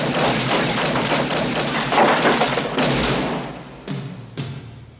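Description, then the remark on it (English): Sound-effect gunfire: a dense, continuous clatter of rapid shots, followed by two sharp, loud single bangs near the end that fade quickly. No one speaks. “I'm glad you added in the gunshots.”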